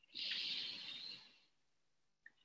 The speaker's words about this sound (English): And I'm yawning. You feel like yawning to yawn or stretch or wiggle around.